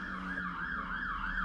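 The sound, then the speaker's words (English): A fire engine siren wails in a fast, steady up-and-down yelp, rising and falling about three times a second over a low engine rumble, loud and continuous with no talking. “Fire engine.”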